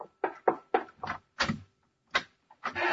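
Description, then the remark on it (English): The door of a room in the White House being opened, with a run of short, uneven creaks and clunks over a few seconds and quiet gaps between them. No voices are heard. “You can open the door wider, Mary.”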